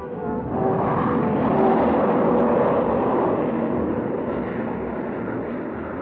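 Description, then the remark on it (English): A huge freighter spacecraft passes overhead in a loud, steady wall of rumbling noise that swells early and holds for several seconds, with no voices present. “little more than an hour after Jet had spoken to Frank, the huge freighter passed overhead”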